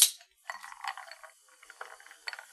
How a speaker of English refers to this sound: I wanted to do a spritz, so I'm just going to add some bubble water and see if that works out. It's a gamble.